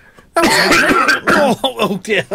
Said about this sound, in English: You've had the big cough.